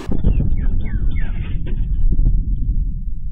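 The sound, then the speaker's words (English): A sonic boom from two fighter jets scrambled to intercept an unresponsive Cessna aircraft, heard in the morning in Washington: a loud, deep rumble that starts abruptly and rolls on for about three seconds, easing slightly toward the end, with no voices. “Overseas and in the US, residents in Washington were terrified when they heard a sonic boom this morning.”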